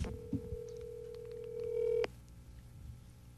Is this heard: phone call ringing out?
yes